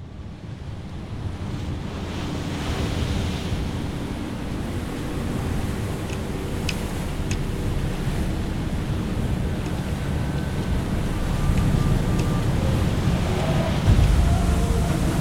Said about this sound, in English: The storm was ferocious. The winds neared 200 kilometres an hour, and icebergs were tossed around by 10-metre waves. A New Zealand naval commander would later describe it as the worst conditions he had experienced in 3 decades at sea.